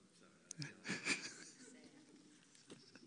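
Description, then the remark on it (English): A breathy, drawn-out yawn from someone in a group discussing a psalm swells and fades over about a second, followed by quiet murmur and a faint sniff. “Was there a word mixed into that yawn, or did it just kind of come out?”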